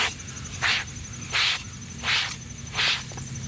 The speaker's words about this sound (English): Or me running a hairbrush over my bald head? The answer is me and my hairbrush.